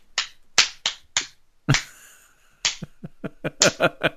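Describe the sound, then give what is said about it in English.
A lone person claps to imitate the sparse applause of about six people in a movie theater of about 300 at the end of a film: several spaced, sharp claps, a heavier smack, a short lull, then a quicker, uneven run of claps. “The applause at the end of the movie basically sounded, maybe imagine about six people in a theater of about 300 doing this.”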